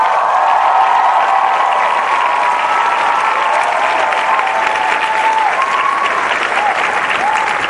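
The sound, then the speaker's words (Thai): A crowd applauds steadily for several seconds, a dense, loud wash of clapping with no break, with faint cheers or whistles rising now and then through the noise. “ใครเก็ตมันต้องปรบมือดังกว่านี”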